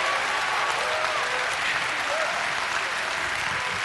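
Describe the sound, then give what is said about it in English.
An audience claps loudly and steadily as a clap offering of praise to God, a dense, continuous wash of many hands applauding at once, with faint voices calling out underneath. “If you're ready for the angels of God to be released, give him a great clap offering of praise.”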